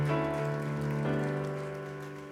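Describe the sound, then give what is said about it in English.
An audience gives a group of men a big round of applause: a steady crackle of many hands clapping, with sustained, ringing chords of music holding underneath. The chord shifts about a second in and the clapping fades slightly toward the end. “Come on, give these gentlemen a great big round of applause.”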